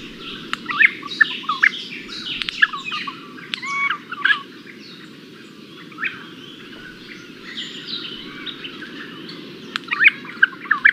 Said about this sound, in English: And you might be thinking, what does a Regent Honeyeater sound like?